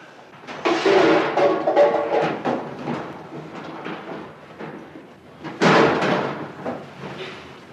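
A cupboard door is shut twice, first with a rattling, clattery movement lasting a second or two, then after a pause a sharper, louder bang that fades quickly. No voices.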